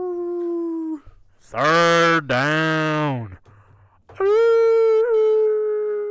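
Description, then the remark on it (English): A person imitates a red wolf howl with several loud, drawn-out vocal howls that swoop up and down in pitch, separated by brief pauses. “Do the Red Wolf.”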